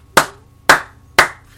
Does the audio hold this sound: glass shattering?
no